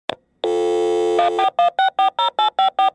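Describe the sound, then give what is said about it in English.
A telephone sound effect: a short click, a steady electronic tone, then a rapid run of evenly spaced ringing pulses, loud, with no one talking. “Get the phone!”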